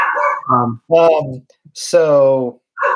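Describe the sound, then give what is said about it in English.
A puppy barks several times in a row, loud, with drawn-out, tonal barks separated by short pauses, the longest one slightly whiny. “Which dog is that barking?”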